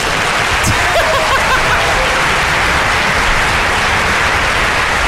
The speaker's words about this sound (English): No. I actually got a clapping sound right here. Oh, really? Yeah. Oh, y'all want to hear it? We're all successful. Right. So here goes …. Actually, I'm going to clap for … right now.